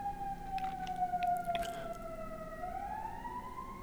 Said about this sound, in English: Oh, someone's in a bad way. There goes an ambulance.